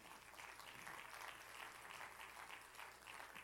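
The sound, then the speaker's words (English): A church audience claps its hands to the Lord steadily for a few seconds, a dense, continuous patter of many hands at moderate loudness, with no voices over it. “Can we clap our hands to the Lord this evening?”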